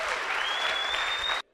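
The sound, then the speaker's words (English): An audience claps hands for Jesus in a dense, steady burst of applause, loud and sustained for over a second before stopping abruptly, with a faint high tone running through it. “Clap your hands again for Jesus.”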